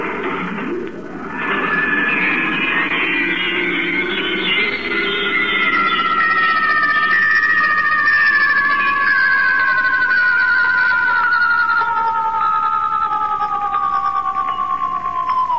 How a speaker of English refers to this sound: We're going into star drive.